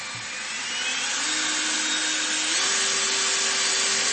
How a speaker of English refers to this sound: I'll just show you something else about this leaf blower. This is a great leaf blower. All right, watching.